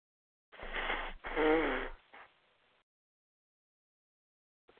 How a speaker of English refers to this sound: Excuse me, I have to blow my nose. Please excuse me.